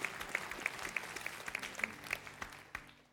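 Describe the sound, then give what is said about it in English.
An audience claps together as a clap offering to the Lord, a steady, dense burst of applause that carries on for a few seconds, with no talking, easing off slightly toward the end. “Now, would you give the Lord a clap offering and say how much you love him?”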